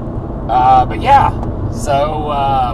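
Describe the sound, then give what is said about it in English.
A steady low rumble of road noise fills the cabin of a moving car, continuous throughout, with voices talking over it. “So, if you notice, there are no intros on this episode because we are filming in the car so I can get it posted up.”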